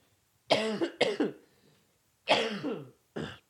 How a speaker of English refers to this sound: I'm so sorry about all the coughing this week. Oh my God.